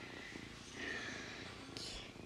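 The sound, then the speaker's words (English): A kitten purrs in a steady, rumbling rhythm, soft but continuous, with a brief rustling movement partway through and no voices. “It's purring.”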